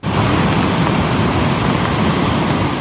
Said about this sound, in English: Helpless residents, powerless to save their homes and their community from raging water. I've never seen anything like it. It's pretty extreme, yeah.